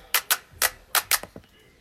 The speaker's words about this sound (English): So, yeah, we kind of want to give it up to Serena right now, man. Give it up to Serena. We'll make it clap. We'll make it clap.